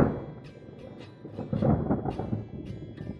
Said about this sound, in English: The night after you came to Seji's house for dinner, there was a bad storm.